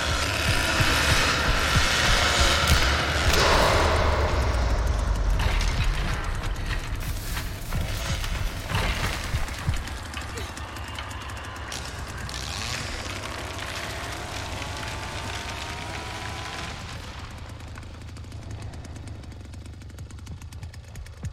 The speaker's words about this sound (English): First of all, the sound effect for the chainsaw is very good. It's very chunky. Yep. It's very menacing sounding. They do a good job with it. It sounds to me almost ripped like right from the film.